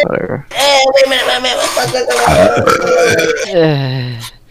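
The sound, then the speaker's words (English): A long, loud, drawn-out burp after drinking a lot of water rumbles for several seconds, its pitch wavering and shifting before tapering off at the end. “That's just water. I can burp that.”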